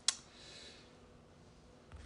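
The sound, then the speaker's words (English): A single sharp mouse click pressing the dice button of a random story-idea generator on a computer near the start, followed by a quiet, faintly hissing background tone and a soft second tick at the very end. “Pressing the button now, and I've got Becoming Fortunate, Enlightenment, and Monument.”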